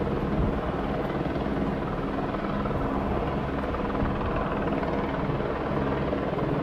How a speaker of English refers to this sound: There they are. I can feel, can you see the trees moving? The wind from these helicopters?